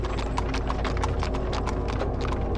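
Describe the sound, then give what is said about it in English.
Steady clip-clop of two horses' hooves pulling a carriage at a brisk, regular rhythm, fairly loud, with a low rumbling undertone like wheels rolling along a road. “I was down to two horses now, but it was still difficult to turn a carriage around on this road.”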